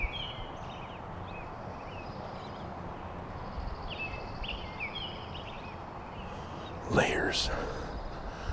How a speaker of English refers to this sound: Layers of intermingled bird calls, overlapping and intertwining one with the other. I like it. I like it very much.